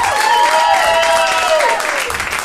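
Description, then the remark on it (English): The audience of the live show Personally Speaking claps loudly and steadily for a couple of seconds, the dense patter of many hands mixed with some cheering and whoops that fade slightly toward the end. “Clap your goddamn hands.”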